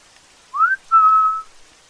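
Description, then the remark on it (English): A person standing behind someone whistles at them, two notes: a short rising one, then a longer steady tone. The whistle is clear and moderately loud against near silence, with no talking. “But then they whistled again, and I realized they were standing somewhere behind me.”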